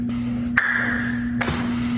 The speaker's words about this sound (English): And that was a very loud hand slap, kind of like when Carl Weathers and Arnold Schwarzenegger had the big grasp in Predator.